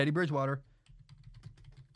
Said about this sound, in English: I'm typing on the keyboard. You hear the clicky click clacks? It's searching.